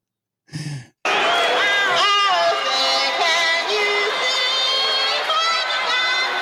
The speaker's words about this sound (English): She's blocking out the booing. Now, again, she's already got her fingers in her ears. Mm-hmm. They're booing, and she's trying to get through this.